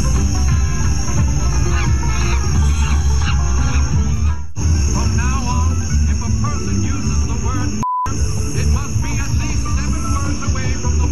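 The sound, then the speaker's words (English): A neighbor makes loud, continuous monkey-like hooting and screeching calls at a Black family stepping out of their house in Virginia Beach, over a dense, noisy background with insect-like buzzing, briefly cut off midway and interrupted by a short beep. “Whenever we would step out of our house, the monkey noises would start.”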